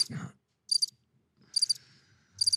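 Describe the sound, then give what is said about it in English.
A cricket sound-effect button plays three short bursts of cricket chirping, each a quick trill spaced about a second apart, bright, with a brief low murmur at the start. “Where's the cricket button?”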